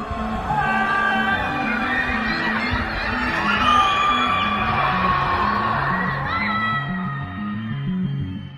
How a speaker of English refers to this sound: And some have taken to protesting against the measures from the confines of their homes, screaming and shouting from their windows and balconies.